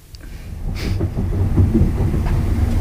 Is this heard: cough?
no